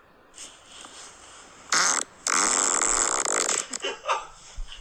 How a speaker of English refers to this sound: All right, let's keep going through these farts.